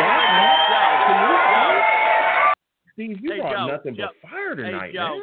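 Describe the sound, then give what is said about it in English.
A loud, dense roar of crowd cheering and applause fills the first half, cuts off abruptly, and after a brief silence a voice starts talking. “Listen, I don't know if I got the bigger applause tonight or Robert Saleh in his press conference today.”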